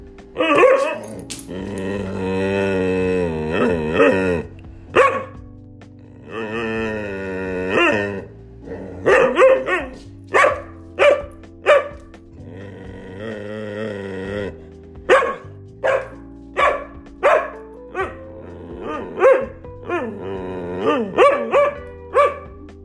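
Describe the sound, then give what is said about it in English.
A dog that needs to poop makes drawn-out, wavering whines and yowls, then breaks into a long run of sharp, loud barks in quick succession, with no one talking. “That's the sound of a dog that needs to poop.”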